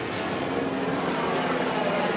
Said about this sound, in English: And military helicopters are flying above.